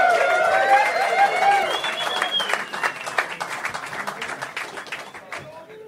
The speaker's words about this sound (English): Right, let's get them back out of here, folks. Round of applause for Kelly Slater and Mark Occhialupo.